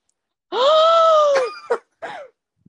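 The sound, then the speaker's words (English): A long, drawn-out dramatic voiced gasp, holding for about a second before trailing off, followed by two short breathy vocal bursts and a faint click. “That long gasp.”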